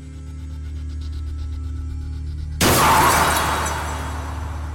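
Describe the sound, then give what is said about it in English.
A steady low car engine rumble is cut off by a sudden, loud crash as the car hits a tree, with shattering debris that rings out and slowly fades. There is no talking. “A car brushes by you and crashes into a tree.”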